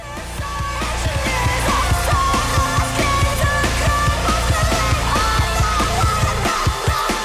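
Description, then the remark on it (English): A loud, dense rock song, the opening track, with pounding drums and a strained, screamed vocal wailing over the thick wall of distorted instruments, sustained throughout without pause. “Like, even on the opening track, they just let loose this scream that you can feel, like, you can feel the blood in your own neck.”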